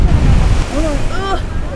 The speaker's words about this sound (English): You're at the beach for the very first time! You want to see it? You want me to turn you around so you can see it? Okay.